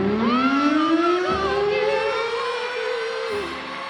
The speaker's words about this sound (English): Let me hit the siren.